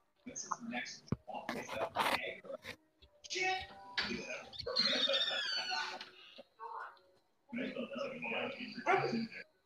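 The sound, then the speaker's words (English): A female dog gives a series of short barks and yips in uneven bursts, ready to be let back inside, with faint whispery voices and rustling mixed in between. “Give me a second, I need to get my dog because she's ready to come back in.”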